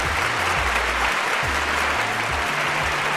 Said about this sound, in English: Oh, fans, your warm applause always starts me off on a good foot as I welcome you into the adventure